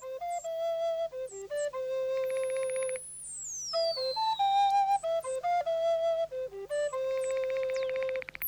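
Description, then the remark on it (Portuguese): Synthesizer tones imitate birdsong in calm flute music, with short chirping phrases and sweeping high glides over a steady tonal bed and a low sustained hum, the pitched notes hopping rapidly and continuously throughout. “Como você pode ouvir, eles estão simulando como se fossem passarinhos com sintetizador e uma música bem calma de flauta, como para começar o dia bem calmo, um passeio bem tranquilo.”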